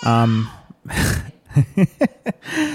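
A baby girl yells with a sustained, strained cry, then lets out a string of short, choppy vocal bursts and breathy sounds, fairly loud and without clear words.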